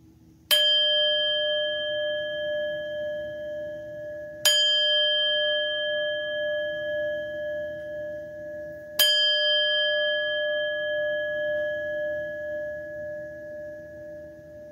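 A bell is struck three times at slow, even intervals to begin a reading, each clear metallic tone ringing out and lingering as it slowly fades, with no talking.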